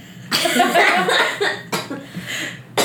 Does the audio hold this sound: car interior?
no